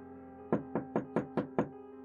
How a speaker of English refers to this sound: About 20 minutes later, I heard a knock at my door.